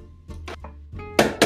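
A container is banged down on a kitchen counter to get everything inside back down before pulsing: two loud, sharp knocks in quick succession near the end, preceded by softer clattering and rattling. No one speaks.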